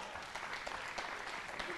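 A crowd claps steadily, a dense wash of many overlapping hand claps at even loudness for the whole stretch, with faint voices mixed in underneath.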